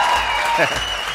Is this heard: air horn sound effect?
no